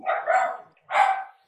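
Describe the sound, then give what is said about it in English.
A dog barks twice, two loud, rough woofs separated by a short pause, with no talking over them. “We got the dogs, they're ready too.”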